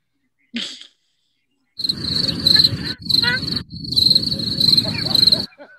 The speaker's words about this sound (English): Cricket.